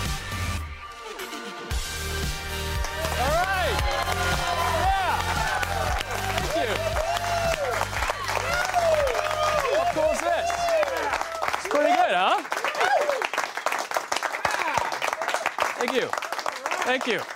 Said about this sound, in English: Thank you. No one told you to stop clapping. Yeah, all right, thank you very much.